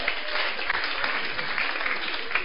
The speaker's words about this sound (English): Let's clap for them. Clap for them.